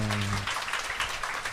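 The audience of a program about Bangladesh applauds steadily after a guest's closing thanks, a dense, continuous patter of many hands clapping at an even loudness, with a brief low tonal hum at the very start.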